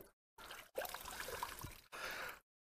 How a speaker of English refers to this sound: But watch this. I just start to clean it with a wee bit of water. Whoa. And I clean it again.